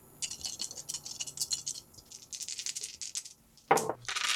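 Three dice rattle rapidly in a cup or cupped hand for several seconds during a tabletop game roll, then clatter loudly onto a hard table surface near the end, crisp, with no talking.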